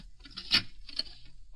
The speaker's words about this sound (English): Oh, your coffee's boiling.